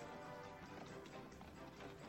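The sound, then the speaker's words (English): Horse hooves clip-clop in a quick, steady rhythm as a horse is ridden in a movie, faint, blended into a dense, continuous wash of background sound with no one speaking. “David Hasselhoff cannot ride a horse, and I'm not even sure that was him.”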